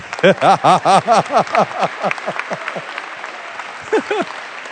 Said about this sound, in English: Let's clap our hands unto God.